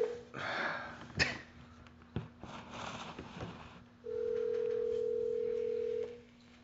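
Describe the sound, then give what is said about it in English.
A single steady ringback tone from an outgoing phone call, a clear two-second hum-like ring after some clicks and handling noises, with a faint electrical hum underneath and no talking. “It's ringing.”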